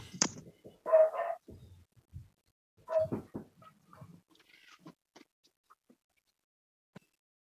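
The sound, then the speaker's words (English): A dog outside in pouring rain lets out a few sharp, fairly loud barks spaced a couple of seconds apart, followed by quieter scattered clicks and shuffling sounds as things settle down. No one speaks. “And they were barking and acting crazy because they may get wet and melt.”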